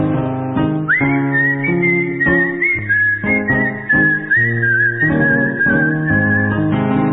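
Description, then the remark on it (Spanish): A person whistles a tango melody, a clear, sustained tune carried for several seconds over a rhythmic instrumental accompaniment with steady chords, the whistle loud and up front. “Me paro en aquella esquina, cueste sanguiste me pongo a chiflar.”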